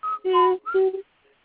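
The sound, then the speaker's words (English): A person whistles a short TV theme tune of four sustained notes, breathy and slightly buzzy like a shaky attempt, moderately loud, lasting about a second before stopping. “I can't whistle”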